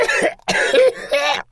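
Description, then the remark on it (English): A quick series of three harsh coughs from someone with the sniffles, each a short rough burst with brief gaps between, heard alone without talking. “Oh, sounds like the sniffles.”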